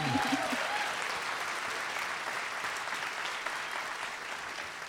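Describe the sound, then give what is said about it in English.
Steady audience applause for cute pets that were shown, a dense wash of many hands clapping at an even level for several seconds, with a brief voice trailing off at the very start. “Round of applause for those cute animals.”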